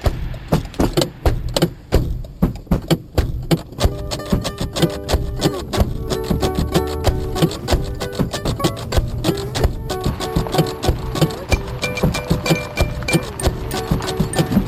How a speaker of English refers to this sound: Instead of playing drums, you used parts of the car, like the doors, as percussion.